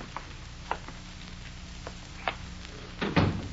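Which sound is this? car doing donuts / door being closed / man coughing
door being closed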